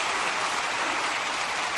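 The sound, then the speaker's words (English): An audience, kids among them, claps again for a band that led the morning service, a dense, even wash of many hands with no pauses or individual claps standing out, and no voices heard over it. “Kids, yeah, let's clap again.”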